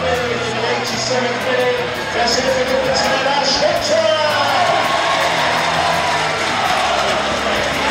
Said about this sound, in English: And that has woken up the Mazuma Stadium crowd. You can hear what it means to the supporters here this afternoon. A good finish from Hunter, his first goal for the Shrimps, and we're back all square.